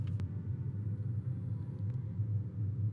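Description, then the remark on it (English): A steady low rumble of cars crawling in slow traffic down a slope, a constant deep drone with faint brief clicks above it, moderately quiet, with no voices. “Do the sounds of cars relax you?”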